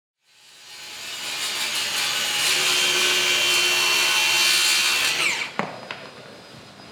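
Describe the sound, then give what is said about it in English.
A power saw whines steadily through wood for about five seconds in a massive room with ceilings over 50 feet high where a house is being framed, among pallets of 2x4s and plywood; a bright buzzing roar with a faint steady tone beneath, then cuts off, followed by a sharp knock and a few clatters. “And in the middle of this massive room, what looks like a house being framed.”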